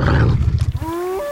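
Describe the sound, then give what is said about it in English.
A wild wolf gives a deep, rough snarl that breaks into a few pulsing growls, then shifts into a brief, rising whine-like howl, loud with no one speaking. “A wild, predatory wolf.”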